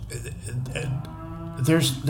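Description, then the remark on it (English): Cows moo in low, drawn-out calls somewhere in the background while people talk over them, the lowing rising and swelling near the end of the moment. “The cows are really going off.”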